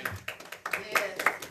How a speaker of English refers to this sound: Somebody needs to give God some hand clap of praise this morning.